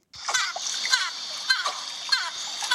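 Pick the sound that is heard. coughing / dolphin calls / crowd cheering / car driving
dolphin calls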